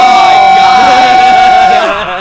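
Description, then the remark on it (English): A group of people scream together in excitement, a loud, sustained burst of high-pitched overlapping voices that holds steady for about two seconds before tapering slightly at the end. “We're going to scream.”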